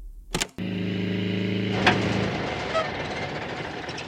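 After a sharp click, a car engine's steady low hum drones for a couple of seconds, then cuts out, leaving a soft airy hiss and a faint knock. No one speaks.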